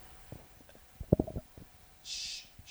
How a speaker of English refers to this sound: Stop stifling your hiccups.